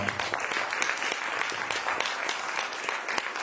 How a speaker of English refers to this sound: Y'all, let's give God a round of applause.